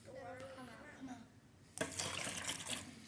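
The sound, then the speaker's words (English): A voice speaks briefly, then after a pause water suddenly sloshes and splashes as a bottle of water with a small Christmas ball placed on top is turned upside down, a fairly loud gush that keeps churning to the end. “If I take this bottle of water and I put this little Christmas ball on top of it and I turn it over, will the water come out or will the water stay in?”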